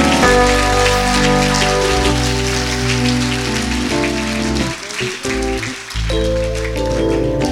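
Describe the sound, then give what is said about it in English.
Steady crowd applause for a woman who has come forward for prayer, a dense crackling wash of clapping, runs through the whole clip beneath loud sustained music with deep held chords. A brief dip near the middle, then it continues. “Come on, give her a hand clap, man.”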